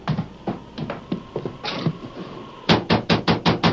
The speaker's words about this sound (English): Well, that's strange. We've certainly knocked loudly enough for him to hear. We knocked plenty hard.